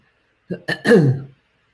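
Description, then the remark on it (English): A quick run of three harsh coughs in rapid succession from a host during a live show, the last one longer and more throaty, with silence on either side. “Great time to have a coughing fit live on show”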